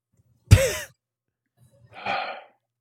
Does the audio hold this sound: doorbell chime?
no